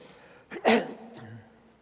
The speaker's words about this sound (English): And we may have to all cough periodically together. And when we do that, we'll just take that as an amen.